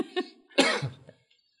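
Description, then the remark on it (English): A person coughs, a short throat-clearing burst followed by a stronger, raspy cough, then quiet. “I'm about to cough.”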